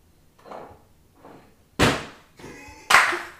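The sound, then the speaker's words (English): A cat named Nugget knocks over a can of Lysol: two soft taps, then two sharp, loud metallic clanks about a second apart, each leaving a brief tinny ring. No one speaks. “Nugget, our cat, my cat just knocked over a can of Lysol.”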